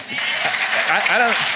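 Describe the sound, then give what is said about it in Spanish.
A church audience applauds during a sermon given in English with Spanish interpretation, a steady, dense wash of clapping that fills the whole moment, while a man's voice speaks over it, rising in pitch toward the end. “I don't know why they're applauding that.”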